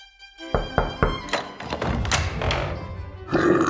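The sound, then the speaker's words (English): Four quick, hollow knocks on a door in an even rhythm, followed by a stretch of shuffling, clattering noise, with a faint steady musical tone underneath. “Oh, look! The bears are at the door!”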